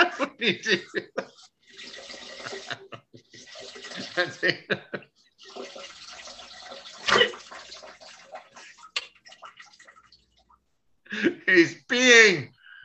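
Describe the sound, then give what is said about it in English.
A stream of liquid splashes into a toilet bowl with the seat up, then a long rushing toilet flush follows, with a sharp clunk midway. Voices talk briefly at the start and end. “I put up the seat and I flushed.”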